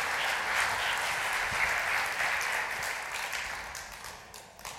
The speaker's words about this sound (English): Shall we just put our hands together and applaud the Lord Jesus Christ on his Resurrection Sunday.